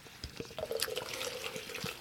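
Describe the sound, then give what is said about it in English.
A small sample of sour ale with cranberry, caracara orange, star fruit and spices, from Fat Orange Cat Brewing of North Haven, Connecticut, splashes into a glass in a short pour, a steady gurgling trickle with a faintly rising ring as the glass fills. No voices. “Yeah, I was gonna say just a little splash in there is fine. Get a little sample of this.”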